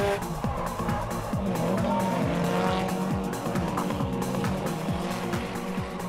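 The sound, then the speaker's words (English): Drift cars roar with rapid, repeated engine revs while tires squeal and screech almost continuously as the backs of the cars slide, a loud, dense wall of motor noise and skidding rubber. “Drifting is the art of sliding the back of a car.”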